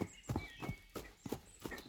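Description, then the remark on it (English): A pony named Tinkle, with a rider, trots on the soft green grass of a big yard around the Farley home, its hoofbeats thudding in a steady, brisk rhythm of about five paired footfalls over two seconds, moderately loud with no one talking. “So he began to trot on the soft green grass of the big yard about the Farley home.”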